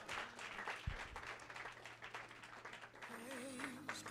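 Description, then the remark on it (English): An audience claps steadily for about four seconds as a clap offering to Jesus, a dense, lively patter of many hands. A low sustained tone hums underneath, and a wavering musical note rises near the end. “Give a clap offering to Jesus and bless the name of the Lord.”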